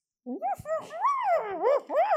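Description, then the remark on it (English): A little dog lets out a muffled bark that slides into a whiny, rising-and-falling yelp, fairly loud for about two seconds, with nothing else around it. “Dusty does so and gives a little muffled bark of delight at what he sees.”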